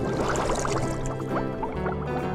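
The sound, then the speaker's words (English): Water pours steadily into a glass or bottle during a water break, a continuous gurgling splash with the pitch rising as it fills, lasting a couple of seconds with no talking. “Just have another water break.”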